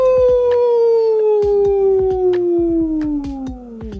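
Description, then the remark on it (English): A person takes a deep breath and lets out a single long, wolf-like howl that holds steady and slowly slides downward in pitch for about four seconds, loud, with soft rhythmic tapping beneath it. “Take a deep breath in. 1, 2, 3. And let out a howl.”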